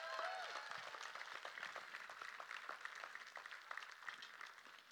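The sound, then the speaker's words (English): An audience claps steadily for several seconds as praise to God, a dense, continuous patter of many hands that stays fairly even in loudness, with faint voices mixed in. “So give God a hand clap of praise.”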